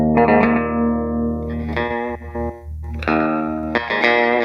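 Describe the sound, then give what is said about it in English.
An effected electric guitar plays a short riff: a sustained low E note moving up to a B, then quick hammer-on and pull-off notes, with chorus-like shimmer and a steady, fairly loud tone. “Yeah, it's the first part is just E to that B, and then a hammer or pull off.”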